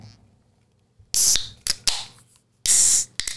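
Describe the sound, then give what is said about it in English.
A yellow beer can printed with mountains and a rising sun cracks open with sharp metallic clicks followed by bright, fizzy bursts of escaping hiss, a second louder hiss coming later, with no voices over it. “Oh, there we go. Cracking that open.”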